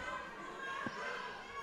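A single heavy thud of a wrestler sent by an Irish whip into the ring corner turnbuckle, going down hard, brief and dull, rising out of a steady wash of crowd noise in a large arena.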